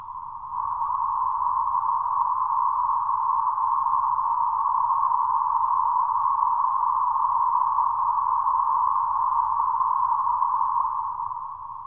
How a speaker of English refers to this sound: As the frequency of each band is fixed, what is variable here is the amplitude of each band. Let us connect the white noise to a third octave filter and listen.